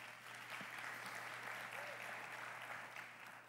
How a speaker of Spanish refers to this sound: Un aplauso, por favor.